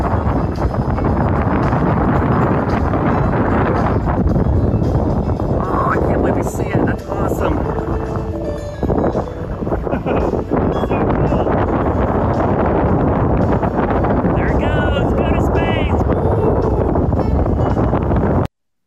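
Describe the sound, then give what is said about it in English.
Heavy wind buffets an outdoor microphone at a Disney theme park in a loud, continuous low rumble for the whole stretch, with indistinct voices and faint theme park music half-buried beneath the roar. “Besides it being a little windy, you can hear like the theme park music playing in the background.”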